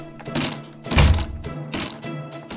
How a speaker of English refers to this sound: Out of the way, lad. I'll smash the door in.